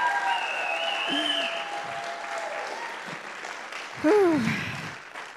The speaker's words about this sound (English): Let's give God another round of applause.